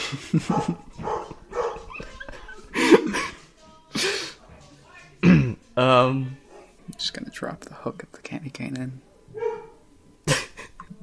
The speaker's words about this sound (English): Mostly just the dog barks. Yeah, okay. The barking's probably stopped so I could talk over the peopling.